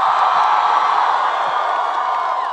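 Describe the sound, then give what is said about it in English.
A large rally crowd in Los Angeles cheers and roars as Jane Sanders is introduced, a loud, steady wash of voices, unbroken for the full two and a half seconds, with no single voice standing out. “My gosh, what an incredible crowd.”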